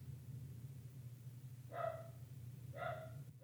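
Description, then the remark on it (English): A dog barks twice, about a second apart, moderately loud, over a steady low background hum with no voices. “I was going to say a muzzle for your dog.”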